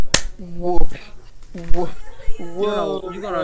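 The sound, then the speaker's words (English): A single sharp hand clap cracks out right at the start, followed by voices talking and exclaiming for the rest of the moment. “give your brother a clap for his chuckle.”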